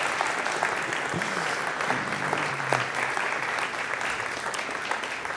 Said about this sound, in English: Can we have a round of applause